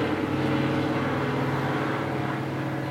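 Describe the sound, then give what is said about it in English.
A motorcycle engine rumbles loudly and steadily with a low, throaty drone, holding even throughout rather than fading in or out; no voices. “There goes you on his motorcycle.”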